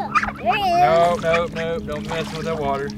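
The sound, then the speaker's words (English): A woman's geese honk repeatedly, a run of loud, nasal calls overlapping one another, with a low background rumble in an outdoor setting by water. “Those are real geese?”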